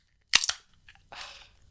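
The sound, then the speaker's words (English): A 330ml beer can cracks open cleanly with two sharp metallic clicks in quick succession, followed a moment later by a short, soft hiss of escaping fizz. No one speaks. “Crack it open and we can cheers.”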